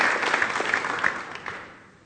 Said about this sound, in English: Yeah, you can applaud that if you want.